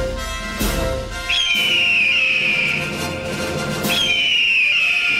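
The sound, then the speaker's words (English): Two shrill, piercing eagle screeches from a sound effect, each starting with a sharp attack and then holding a high, slightly falling cry for about two seconds, over a steady low rumble of background noise. “I think you're only allowed to play that for the Screaming Eagles.”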